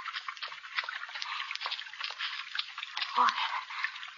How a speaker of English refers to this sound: Water. Water again.